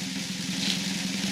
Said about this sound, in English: All right. We're going to do the drum roll.